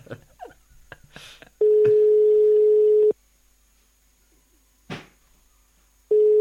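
A Spanish telephone ringback tone while calling someone abroad: a steady single-pitch beep lasting about a second and a half, a long silent gap, then the tone starting again, preceded by faint clicks and handling noise of the line connecting.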